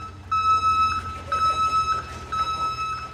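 A garbage truck's reversing alarm beeps in a steady repeating pattern of long, shrill tones over a low rumbling engine and background machinery, as the truck backs into the covered garage of a city waste transfer station to dump a load of garbage for the compactor.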